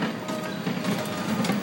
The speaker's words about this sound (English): Got a train going by. Yeah, we got a little mini toy train going by. With no kids.